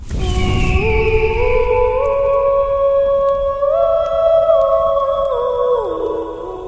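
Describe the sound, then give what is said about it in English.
An ethereal phoenix song for Severus Snape from Harry Potter: layered, sustained tones that hold steady and then glide smoothly between pitches, following a brief breathy burst at the start. Loud and continuous, with no talking. “Phoenix Song. Yes. For Severus Snape, whose true sacrifice is about to become clear at last.”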